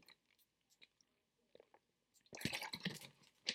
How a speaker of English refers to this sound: Now some water, because that was, whew, that was a flow.